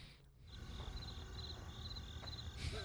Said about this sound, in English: I'm just going to put some cricket noise over that.